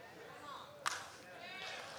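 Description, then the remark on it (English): A slingshot whips around and lets fly with one sharp, crisp crack, followed by a faint airy swish trailing off against a quiet background. “He whips around his slingshot and he slings it while he's running at the enemy.”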